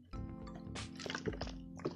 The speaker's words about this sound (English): Let me get a goddamn drink of water. You gotta drink water.